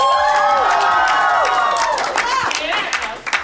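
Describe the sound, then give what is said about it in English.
A small live studio audience cheers and whoops with rising and falling voices over steady, scattered clapping, welcoming the show All Work, No Play, starring Liam O'Brien and Sam Riegel. Loud throughout, tapering slightly at the end. “I will supplement that with crowd noise later.”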